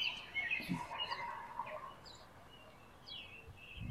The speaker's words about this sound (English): The rain is fairly steady now. Oh, hello, Mr. Robin. Welcome.